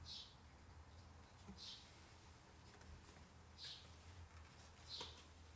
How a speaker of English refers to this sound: Yes, Zahava, these are birds in the background. A few weeks ago, there was a thunderstorm and I got scared for the thunder, so I opted for birds now.